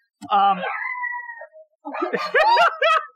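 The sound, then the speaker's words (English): Dogs whine and bark: a long, drawn-out whine first, then a quick run of higher yelping barks with rising and falling pitch. “The dogs are like, no. Barky agrees.”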